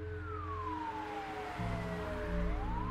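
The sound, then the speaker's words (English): A SWAT truck's siren wails along a street in the affluent Coral Gables neighborhood of Miami, its pitch gliding downward as the vehicle passes, over a heavy, steady engine rumble. Fairly loud, with no voices. “a SWAT truck roared down the street in the affluent Coral Gables neighborhood”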